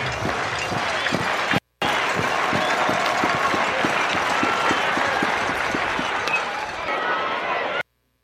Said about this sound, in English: Listen to that crowd. You know, the things we took for granted before COVID, packed houses, chants, stuff like that,